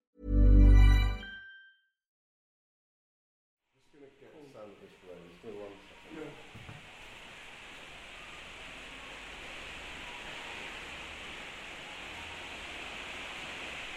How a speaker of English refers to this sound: Currently it's raining, it's just awful weather, typical Manchester weather, you know, but hey-ho, still a nice place.